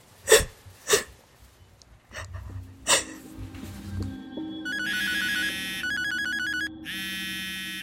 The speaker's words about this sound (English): My phone rings.